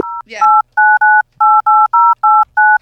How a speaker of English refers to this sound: Real quick, let me, how do I find it? Can I dial out on one of these lines?